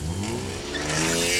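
The engine of an orange Maserati getaway car, driven by Louis Theroux with two escaped prisoners inside and a tiger locked in the trunk, revs loudly, its pitch climbing steadily as the car pulls away, with no voices over it.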